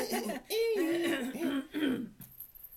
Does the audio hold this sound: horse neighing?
no